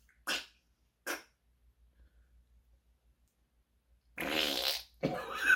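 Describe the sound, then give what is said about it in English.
Two short, sharp fart noises pop out with a pause between them, then after a quiet stretch a longer, louder, buzzy blast follows, trailing into another rough burst. “All you hear is fart noises coming out.”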